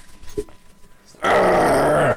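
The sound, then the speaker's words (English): A single loud, wet honk of someone blowing their nose into a tissue, sustained for about a second with a rough, buzzing tone that drops slightly in pitch, following a few moments of near quiet. “Give me, I need another tissue. Right behind you.”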